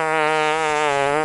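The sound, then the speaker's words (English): A single loud, buzzy fart sound effect played from a sound pad holds a steady raspy tone for just over a second, then cuts off abruptly. No voices accompany it. “I farted.”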